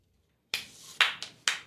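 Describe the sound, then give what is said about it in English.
A short burst of handclapping from a single person after a reading: four sharp, bright claps at an uneven pace, following a brief silence, with no voices. “I always applaud you.”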